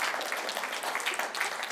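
An audience at a sermon claps steadily, many hands producing a dense, even patter of applause without pause for a couple of seconds.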